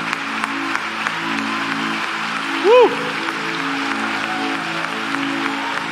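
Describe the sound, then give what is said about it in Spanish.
A church audience applauds the Lord after a prayer, clapping steadily in a dense, continuous wash of applause, with voices murmuring underneath and one brief rising shout breaking through partway. “¿Te atreves a darle un aplauso al Señor?”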